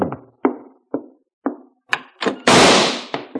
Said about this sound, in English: Then, less than an hour after Mark Donovan and I had checked in at the Bella Vista Hotel, there came a knocking at our door. Visitors already?